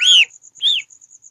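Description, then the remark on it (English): A pet duck gives two short, high peeping calls with a brief pause between them, fairly loud, while operating a phone with its bill; a faint, steady series of high ticks pulses in the background. “You're listening to ASMR and the duck operating my phone with its bill.”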